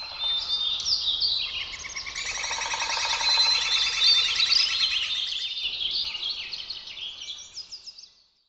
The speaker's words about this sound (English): In these sounds, we learn that there are not just four seasons, but dozens or hundreds. Bird sounds reveal the polyrhythms of a living earth.